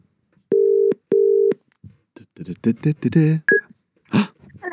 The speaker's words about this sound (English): Speaking of mums, should I get my mum on the phone? Let's see what she's saying. Let's see what she's up to today on a Sunday. Let's hope she answers.